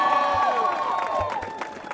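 A large crowd applauds and cheers loudly, with steady clapping and high whooping voices rising over the noise for the whole two seconds.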